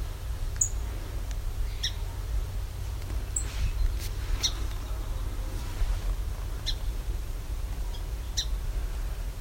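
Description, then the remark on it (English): A song sparrow gives sharp, high ticking calls, spaced irregularly every second or two, fairly faint above a steady low outdoor rumble. No one speaks. “So that's a song sparrow. Ticking.”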